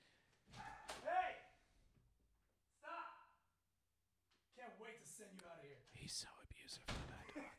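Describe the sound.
A dog barks in short bursts, then a man shouts loudly at the dog, his raised voice muffled, mixed with a few more yelps.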